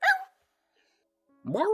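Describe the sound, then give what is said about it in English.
A person mimics the yelp of a puppy being kicked: a sharp, high cry, a second of silence, then a longer whining yelp that rises and falls, fairly loud. “The sound of a puppy being kicked.”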